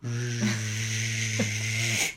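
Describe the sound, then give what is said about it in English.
A voice imitates a shop vacuum being used to vacuum out a car in a garage at about 11 o'clock at night. It holds a steady buzzing drone with a hissy, breathy edge for about two seconds, with a couple of slight wavers before it cuts off. “She had her shop back out, and she's vacuuming out her car.”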